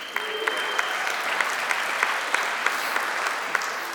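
An audience at First Baptist Church claps steadily for several seconds, a dense, even wash of many hands with a few sharper individual claps popping out at a regular pace.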